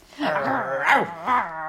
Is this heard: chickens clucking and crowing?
no